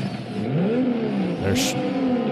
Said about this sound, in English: Now you hear Sean's Mustang with the RB26.